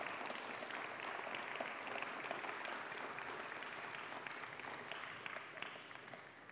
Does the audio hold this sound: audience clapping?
yes